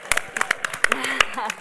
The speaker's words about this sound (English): I mean, I want to say I have a PhD, okay, and I do. You better clap for that.